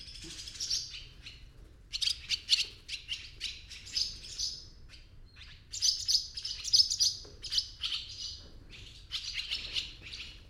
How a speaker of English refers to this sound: The animation and loquacity of the swallows and the like.